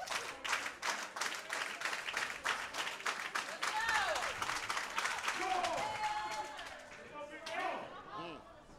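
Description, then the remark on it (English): A wrestling crowd claps in a fast, steady rhythm to get behind wrestler TJ Boss, caught in a top wrist lock by Jamal the Titan, then breaks into loud cheering and shouting voices that rise and swell over the last few seconds. “Crowd getting behind TJ Boss.”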